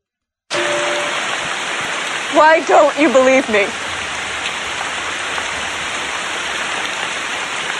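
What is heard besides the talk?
heavy rain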